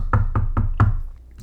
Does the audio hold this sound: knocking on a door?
yes